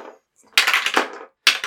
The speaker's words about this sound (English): Let's roll some dice.